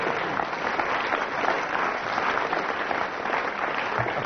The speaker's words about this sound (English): Then I get a round of applause.